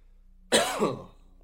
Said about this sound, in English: That cough wasn't a Rona cough either. I didn't bring no water in here with me coughing.